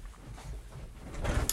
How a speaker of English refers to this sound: Sorry, that's the door.